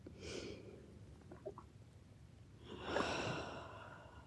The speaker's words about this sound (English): Slowing down, breathing deep. Ocean breath.